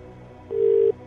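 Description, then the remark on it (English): A single short burst of outgoing-call ringing tone, the first ring of a phone call being placed, a steady electronic hum that starts after a moment of quiet and cuts off cleanly. No one speaks over it. “2 rings. 3 rings. 4 rings.”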